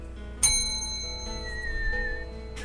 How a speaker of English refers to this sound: Oh, okay. Hit that bell.